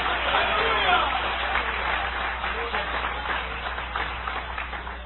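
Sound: audience applause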